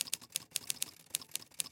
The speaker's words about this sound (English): Look at my typewriter. Well, what about it? Look what's on the paper.